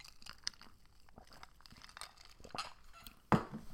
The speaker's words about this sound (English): Ew, did you hear me gulp? Ew.